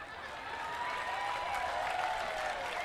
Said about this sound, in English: Yeah, you're clapping.